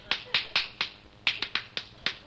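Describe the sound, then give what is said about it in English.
Hands slap bare, oiled skin during a massage in a quick series of nine sharp, crisp smacks, a steady patter with a brief pause midway, moderately loud with no voices. “Look, don't slap, will you please? Rub.”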